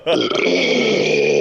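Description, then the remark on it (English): A loud, drawn-out burp, rumbling steadily for over a second with a rough, voiced tone and no talking over it. “Damn, I got a burp.”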